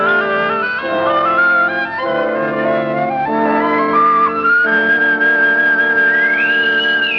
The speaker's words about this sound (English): Listen to that, Captain Gamble. Yes. A bosun's whistle. They're piping us aboard. Like bloody royalty.